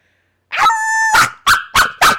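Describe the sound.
A person imitates a dog, starting with a sharp yelp that stretches into a brief whining howl, then four loud, evenly spaced barks.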